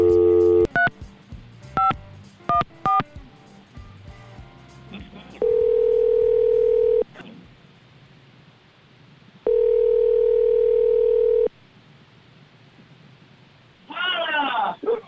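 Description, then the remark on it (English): A rapid run of touch-tone dialing beeps as a phone call is placed to someone on a beach in Mexico, then two long, steady ringback tones separated by a quiet gap, before a voice answers at the very end. “Now, she's off this week, actually on vacation in Mexico, but let's give her a call on the beach. See if she answers her phone.”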